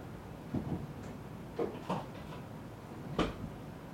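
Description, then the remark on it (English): A few short wooden knocks and a sliding scrape as a kitchen drawer is pulled open and pushed shut to put a pair of scissors away, with no one speaking. “All right, I think I'm done with the scissors, so I'm going to real quickly go way into my kitchen, way over here, and put them in the drawer where they belong.”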